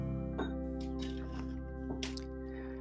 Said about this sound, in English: So I take a couple of sips of tea